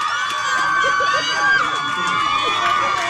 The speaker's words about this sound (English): Jesus Christ. A bunch of kids. Yeah, up in the galley cheering like they scored a touchdown.